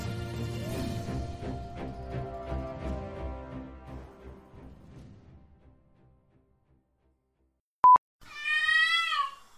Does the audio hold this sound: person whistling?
no